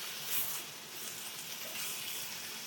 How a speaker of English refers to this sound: So now we're hot, we're sizzling here. I'm gonna add our cherry tomatoes. Get all the liquid out. And we're cooking high. Like we're like high now. Turn your heat up to high. Oh yeah, I love that. Sizzle, sizzle, sizzle.